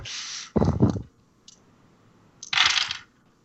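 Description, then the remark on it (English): A lot of dice clatter and roll across a hard surface in a tabletop game's attack and damage roll, in two bursts: a bright rattling tumble at the start and again near the end, with a lower thudding clatter between them. Fairly loud, no speech. “That was a lot of dice.”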